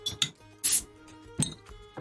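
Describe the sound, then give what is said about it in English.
A drink being cracked open: a few sharp clicks and clinks, then a brief bright fizzing hiss, followed by more light taps and knocks. No one speaks. “Shit, I gotta crack this open.”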